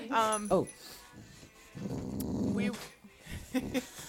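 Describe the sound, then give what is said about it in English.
A female dog gives a low, rumbling play growl to get attention, lasting about a second, with a few short higher yips and grunts before and after it. “Is she grunting at you or like play growling or something? She's play growling.”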